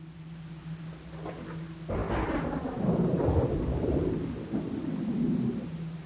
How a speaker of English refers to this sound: Thunder and lightning fill the ashen sky. Rain rips at the exposed skin on her face and arms.